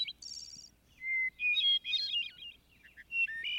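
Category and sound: bird, thrush song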